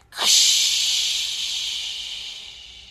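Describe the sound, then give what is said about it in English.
A voice makes a loud, steady hissing 'tsss' in imitation of food sizzling in hot grease. It starts abruptly, holds for nearly three seconds, and slowly fades, with no other sounds. “That's you frying like you've been just put on a grill.”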